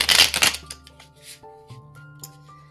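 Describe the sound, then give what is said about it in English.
A brisk riffle of tarot cards being shuffled, lasting about half a second, followed by soft sustained musical tones ringing on quietly afterward. “And when you are shuffling, that's the best time to think about your intention and what we're asking.”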